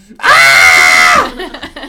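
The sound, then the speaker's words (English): A voice imitates snoring while screaming: one loud, strained, sustained cry lasting about a second, harsh, then trailing off into brief quieter talk. “Like he's snoring but screaming.”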